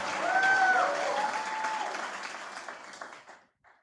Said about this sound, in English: If you receive that, go ahead and do what you're already doing. Take 15 good seconds. Clap your hands. Give the Lord a mighty shout.